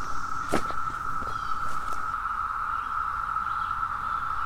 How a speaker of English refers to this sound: It is a din of cicadas. Not going to be able to hear much else.